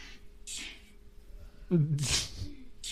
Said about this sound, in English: You just fart again? Yes.